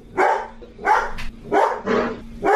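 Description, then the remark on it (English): Paw Dog, a pet dog, barks four times in a steady, evenly spaced rhythm, each bark loud, with a faint steady hum underneath and no talking. “And see, the paw dog agrees with that.”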